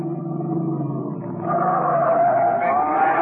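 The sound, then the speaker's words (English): An Erskine Coupe's engine rumbles low and steady, then surges louder as a rising tire squeal cuts in, the car pulling away hard for Baltimore Street with a sustained high screech over the roar. “Packed up our instruments, we piled into a taxi in Red's Erskine Coupe and slammed out for Baltimore Street and Matty's loft.”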